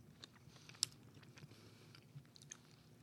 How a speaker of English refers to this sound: I'm trying not to get chewing noises on the microphone.